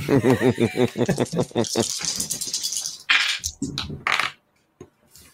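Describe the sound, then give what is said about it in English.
Voices talk at first, then dice clatter and tumble across a hard table in several quick rattling bursts as all the players of a tabletop game roll, before stopping abruptly. “Everybody roll. Fuck these dice.”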